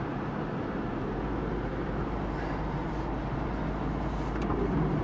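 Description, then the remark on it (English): A Prius hybrid car engine drones loudly and steadily, a dense low rumble that holds level without distinct rev swells. No one speaks. “So, sounds like there's a lot of grunt and no action.”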